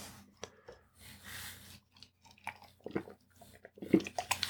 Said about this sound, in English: Sorry about taking a sip on mic. I'm just, my mouth was dry. A sip of water, I might add.